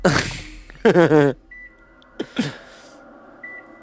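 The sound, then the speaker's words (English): Two short, high-pitched electronic beeps, used for syncing audio, sound faintly, spaced a couple of seconds apart, following louder bursts of wavering voice-like noise and a few sharp knocks. “I like this beeping so far. It's going to help line it up real nice.”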